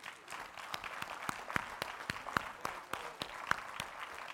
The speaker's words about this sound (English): Let's just give the Lord a hand clap of praise.